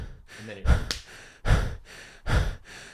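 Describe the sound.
A voice imitates the heavy, rhythmic panting of a man running hard, three loud breathy bursts about a second apart.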